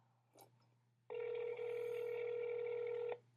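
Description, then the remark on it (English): A steady electronic phone tone holds for about two seconds, preceded by a faint short blip, with a low hum running underneath throughout, as a phone call is placed to the office of Senator Kyrsten Sinema. “Let's call Senator Kyrsten Sinema as well.”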